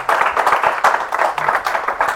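An audience applauds steadily, a dense patter of many hands clapping at once, fairly loud and sustained with small swells and no voices over it.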